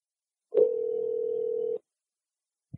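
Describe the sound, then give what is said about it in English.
A steady, mid-pitched telephone dial tone hums for just over a second while placing a call to Robert Kirkman, starting with a small click and cutting off abruptly; a faint click follows, with no voices. “Okay, so let's get Robert Kirkman on the phone.”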